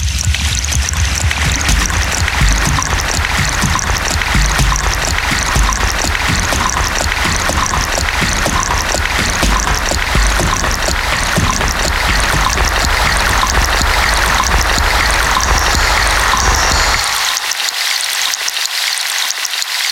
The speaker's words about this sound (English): I love the dynamic movement of the water from one side to the other, and I feel like it's coming over my head and then swishing around to the side of me. So I feel really immersed in the water.